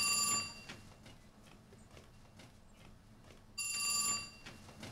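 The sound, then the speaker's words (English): A telephone rings on an outgoing call to a house: two tonal ring bursts separated by a few seconds of quiet line hiss, heard as if through the handset, with no talking. “we actually want to call the house to see if Angelina is there to ask if Sam found the letter”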